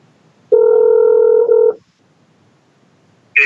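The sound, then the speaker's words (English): A phone call rings out: one loud, steady electronic ringback tone lasting just over a second, then a pause of silence before another sound starts at the very end. “Let's hope he picks up.”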